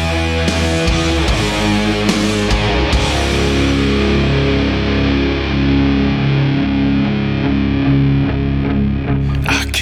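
Heavy metal with thick, distorted guitars grinding out slow, low chords over pounding drums, loud and dense throughout with no vocals, and sharp cymbal crashes near the start and end.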